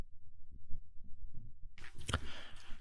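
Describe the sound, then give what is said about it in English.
A fetal heartbeat, heard as quick, muffled low thumps in a steady rhythm, then giving way to a louder, whooshing, staticky pulse like a doppler monitor. No one speaks. “If I understood correctly, she said, there is no such thing of a heartbeat in a fetus.”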